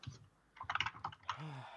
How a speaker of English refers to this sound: I can hear you typing, motherfucker.